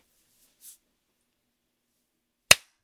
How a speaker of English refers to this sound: Okay, when do you want to clap here?